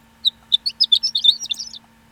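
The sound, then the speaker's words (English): A horned lark's song: a quick run of high, tinkling chirps and twitters that speeds into a jumbled, rising trill, clear for about a second and a half. “It really looks like somebody took a picture of a lark and then, like, just put little horns on.”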